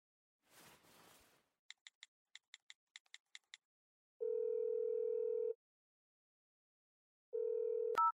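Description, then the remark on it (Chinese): A brief rustle, then eight quick keypad beeps as a daughter dials her mother's number, followed by two long, steady ringback tones on a phone line, ending with a sharp click as the call connects. “喂，女儿啊，怎么有空给妈妈打电话呀？”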